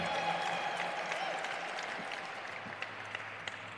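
A crowd applauds steadily, a dense wash of many hands clapping that stays loud and then tapers slightly toward the end, with a few sharper individual claps standing out.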